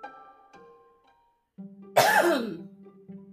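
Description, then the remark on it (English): A single loud sneeze bursts out suddenly, a sharp explosive blast trailing into a breathy, falling tail, heard over a low, steady background hum with no talking. “Excuse me, sneezing.”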